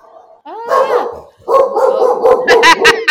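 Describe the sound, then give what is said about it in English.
Amp the dog, who does not like the wolf, whines and yips, then breaks into a run of sharp, loud barks in quick succession toward the end. “Amp does not like the wolf.”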